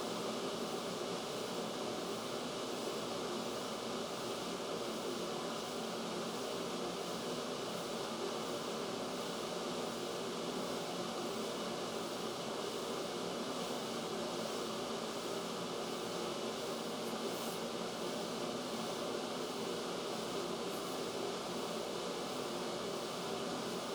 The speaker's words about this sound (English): Oh, the fan is back on. Y'all probably can hear that. Is that good? It's probably bad. I don't know. I feel like on one hand it helps with the echoing.